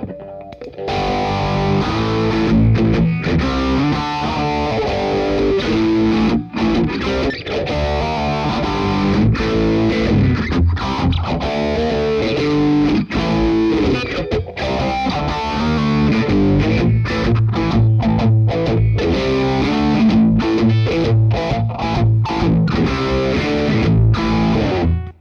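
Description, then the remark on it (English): A heavily distorted electric guitar plays chords and riffs, its tone slowly swirling and sweeping from a modulation effect with its speed turned down, placed before the distortion. The playing is loud and continuous throughout, with no voices. “I'm going to turn the speed down so you can get a little bit more of an idea of what it sounds like before it.”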